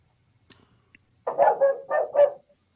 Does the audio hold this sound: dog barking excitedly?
yes